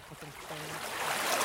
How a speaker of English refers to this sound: This is the Tul River near Zama, a gold mining town in central Mongolia.